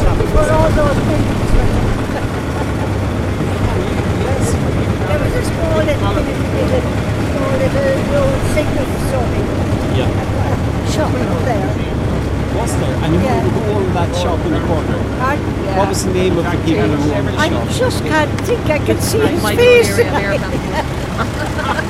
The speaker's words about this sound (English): There's a lot of traffic on the road now.